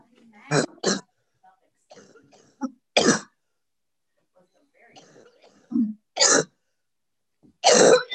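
A person on an online call coughs while unmuted: several sharp coughs in short bursts, some in quick pairs, mixed with low throat-clearing grunts and faint murmurs between them.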